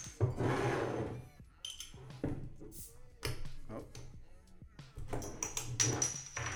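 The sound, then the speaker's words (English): Fairly loud handling of beer bottles or cans: glassy clinks, scraping and rubbing, and a brief sharp burst as one is opened, with no talking. “Well, I'll go ahead and start opening these. There's one.”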